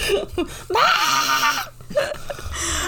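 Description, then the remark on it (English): A male pet dog lets out a loud, drawn-out, whining vocalization lasting about a second, with a wavering pitch, followed by a couple of shorter, fainter yelps. “Oh, there's my dog.”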